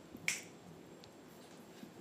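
A single sharp finger snap rings out near the start, bright and crisp, then fades over a low, steady background hum with no voices.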